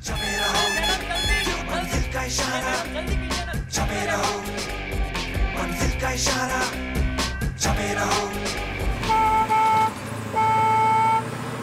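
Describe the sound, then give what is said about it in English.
A school bus horn honks amid busy, rumbling street traffic, with two long, steady blasts standing out clearly near the end. No one speaks. “The sound of the school bus honking and the driver saying, "Madam, jaldi karo," or the Tamil equivalent to that, has been the story of my life every morning throughout my school life.”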